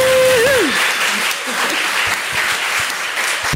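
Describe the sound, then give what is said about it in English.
A crowd applauds steadily for a poet who has just won a big award, dense clapping filling the whole stretch at a loud, even level, with a brief vocal tone sliding down at the very start. “So can we just have a quick round of applause and wave for that?”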